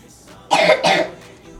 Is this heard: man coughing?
yes